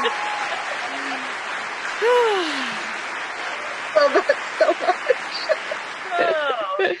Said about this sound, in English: We need our producer to add in some clapping music. Woo! Thank you. Thank you.